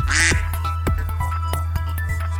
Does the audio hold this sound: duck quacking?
yes